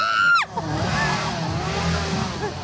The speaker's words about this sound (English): They get super close. I could feel the heat of the chainsaw.